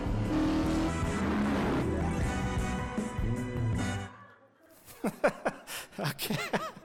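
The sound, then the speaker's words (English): A Charger muscle car engine roars and revs loudly for about four seconds in a TV commercial, then cuts off, followed by bursts of people laughing and chuckling. “And because I do this, I will drive the car I want to drive. Charger, Man's Last Stand.”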